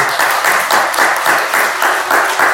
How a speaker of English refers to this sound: Do you want to give these boys a round of applause?